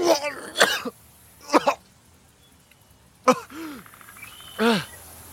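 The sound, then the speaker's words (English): A person coughs and sputters in four separate loud bursts, hacking up fluid while standing and stumbling in ankle-high mud, with strained, groaning voiced edges and short quiet pauses between them. No speech. “As you stand and you stumble, like coughing up this like fluid.”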